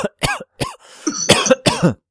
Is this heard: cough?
yes